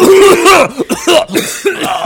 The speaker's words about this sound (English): We're all just coughing the whole time.